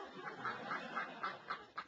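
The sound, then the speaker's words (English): A duck quacks repeatedly in a steady rhythm, about seven short nasal calls spaced roughly a quarter second apart, with no voices. “What are you quacking about?”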